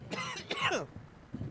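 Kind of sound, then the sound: human body sound, coughing and throat clearing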